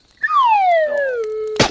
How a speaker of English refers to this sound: Please, anything but the slide whistle. No, get ready please to eat whistle.